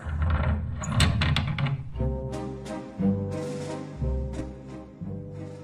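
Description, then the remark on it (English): A junk drawer slides shut with a brief rattling clatter of loose contents, fairly loud, followed by steady music with a regular beat. “Close the junk drawer.”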